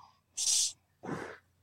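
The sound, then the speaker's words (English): A single deep belly breath drawn in through the gut, with no talking: a sharp, hissy inhale lasting under half a second, a short pause, then a breathier, lower-pitched exhale of similar length. “But if I was to breathe in through my gut, it it would be.”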